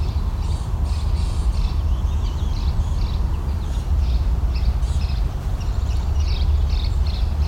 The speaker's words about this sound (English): There's the gnat catcher.